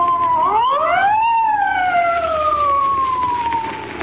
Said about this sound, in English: there's a police car coming up.